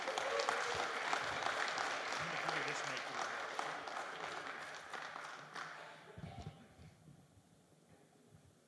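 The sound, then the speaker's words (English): An audience at Generations Church claps their hands one morning to honor a pastor coming up to preach, in dense, steady applause that holds strongly for several seconds, then thins out and fades away, leaving a few low murmurs before near silence. “So would you please honor Pastor Ed this morning as he comes to preach by clapping your hands.”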